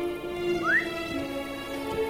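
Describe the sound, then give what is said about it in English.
A horse is summoned in a video game set in Rivendell: a quick rising whistle-like chirp cuts over a steady bed of sustained, droning musical tones, with no talking. “Calling my horse.”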